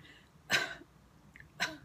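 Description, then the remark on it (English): Two short, harsh coughs about a second apart, each a sharp burst of breathy noise, fairly loud, with quiet in between and no talking. “And when it got to about my neck area, all of a sudden, I started to cough.”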